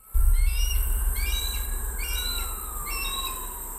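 A loud hawk across the street, identified as a hawk by a phone app, gives a series of about four piercing, whistled cries in quick succession, ringing out clearly over a steady low outdoor rumble.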